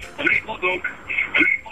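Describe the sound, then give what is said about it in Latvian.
A caller's radio set plays faintly in the background of a phone call, with a voice talking over it in a thin, band-limited sound. “Halo, radioaparātiņu lūdzu nost un tikai funkcionējam telefonu.”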